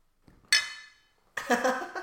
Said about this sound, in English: Alright, okay, we're going in. You can't clink the brown ale, can you? Of course you can. Go on then, let's do it.